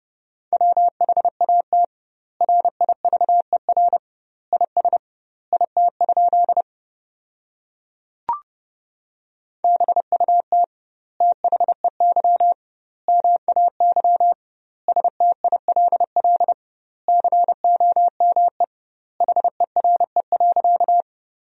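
Fast Morse code at about 30 words per minute, sending sentences made from the 300 most common words with doubled word spacing: a single steady mid-pitched tone keyed in rapid dots and dashes, grouped into words with pauses between, plus one sharp click partway through.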